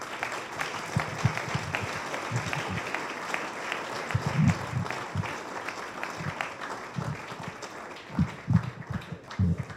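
A crowd applauds steadily for the Member of the Year, a dense wash of many hands clapping at once, with scattered louder claps and a few low thuds rising through it, sustained at moderate volume throughout.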